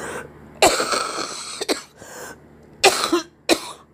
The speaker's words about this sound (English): Listen, how bad it is. It was so bad. That's why I was coughing all night. I can hardly breathe.